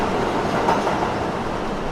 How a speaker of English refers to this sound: He looks up to see the train Jamie would need to take to get to school and waits until it pulls out of the station to say the name.